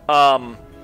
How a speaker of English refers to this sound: Gesundheit.